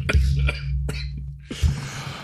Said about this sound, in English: I'm coughing. I'm dying. I choked on coffee.